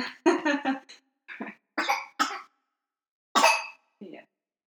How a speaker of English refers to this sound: And I'm sorry about that. The little one just having a good cough.